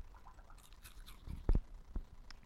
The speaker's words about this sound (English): Go ahead and munch some saltless crackers. Cleanse these palates.